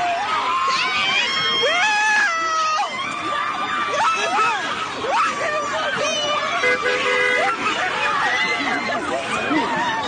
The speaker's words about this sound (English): Here's tape from Chicago. Dozens of young people surround a bus driver and beat him for no apparent reason.